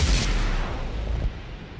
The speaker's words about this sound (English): Explosions. I love it.